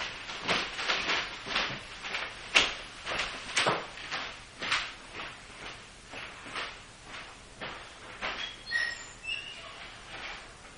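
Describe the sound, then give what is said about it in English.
A door being opened, with a steady series of short scraping, rattling knocks from handling it, no talking, and a faint high chirp near the end. “We'll make, take a slight 2 second break to open the door.”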